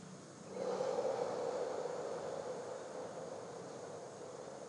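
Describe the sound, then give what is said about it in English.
A long, steady exhale of breath as a last deep breath is breathed right out, emptying the lungs, fairly loud, starting after a brief pause and trailing off gradually over several seconds with a soft airy rush. “For the last deep breath, breathe right out. Let out as much breath from your lungs as you can.”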